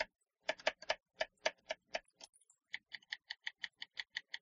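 Mechanical keyboard typing: crisp, clacky keystrokes in an uneven flurry, a brief pause, then a steady, evenly spaced run of sharp clicks. No one speaks.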